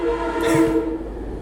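A train rumbles past while its horn sounds a steady, harmonic blast over the low mechanical roar, with no voices present.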